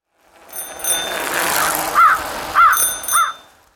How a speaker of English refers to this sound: Wow, it was in the beak of a crow who was riding a bike. Well, didn't see that one coming.